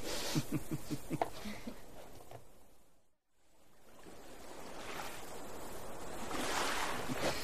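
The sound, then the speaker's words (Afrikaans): Steady wind from the west rushes across open sea with surf washing beneath it, breaking off briefly midway before swelling back up, fairly loud throughout. “Wind waai ook net reg uit die weste.”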